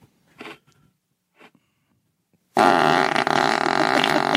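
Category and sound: human body sound, man farting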